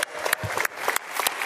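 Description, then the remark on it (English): A crowd claps steadily for the staff, a dense patter of many hands with sharper individual claps popping out above the steady wash of applause. “So everyone on staff, can you give our staff a round of applause?”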